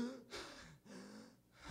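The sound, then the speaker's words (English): A voice imitates someone gasping for air, with three ragged, breathy inhalations in quick succession, each separated by a brief catch. Moderately loud, with no other sounds. “She knows he's in pain, and then all of a sudden, she hears her son begin to gasp for air as he's laying on that couch”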